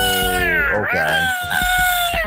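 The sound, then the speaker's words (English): A person yowls in a drawn-out, wavering screech, imitating caterwauling alley cats, with pitch sliding up and down over a couple of seconds, loud. “So a caterwaul is to make a loud, very unpleasant sound. Think about cats in an alley, like.”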